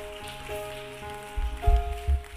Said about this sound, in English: Clap your hands and just give him praise.